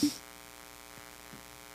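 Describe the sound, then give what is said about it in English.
A faint, steady ringing tone from an outgoing phone call, heard as a continuous electronic hum over the line after a short click at the start, with no one speaking. “Call him up. Let's see if he answers.”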